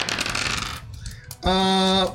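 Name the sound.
dice being rolled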